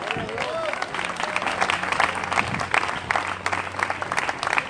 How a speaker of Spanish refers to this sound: Por eso vamos a decirle, te amamos, Jesús. Y denle un aplauso fuerte.